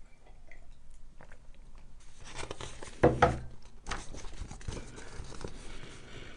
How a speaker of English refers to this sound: Sip a tea. Back away from the mic.